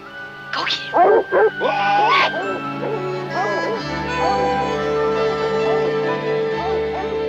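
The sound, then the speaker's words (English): Coon dogs bark and yip in a quick, excited burst of several sharp, high calls near the start, then fainter yelps carry on beneath a steady background hum with voices. “Now we're going to see if you're coon dogs or if you're not.”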